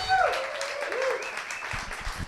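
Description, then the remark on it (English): A comedy-show crowd applauds all the comics of the night, dense overlapping claps forming a continuous wash of noise, with a few cheers and whistles briefly rising above it at the start. “Look, everybody give it up for all the comics you've heard tonight.”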